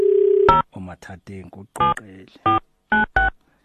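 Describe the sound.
A steady telephone tone sounds loud for half a second, then a recorded Vodacom message says in short, clipped phrases that the number dialed is not available, heard through a phone line.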